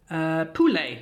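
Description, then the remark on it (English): A person imitates a chicken with two short, nasal clucking calls: a sustained first squawk, then a brief pause and a rising-and-falling second call, loud. “I'm not mad, I'm just trying to explain to you what a chicken is.”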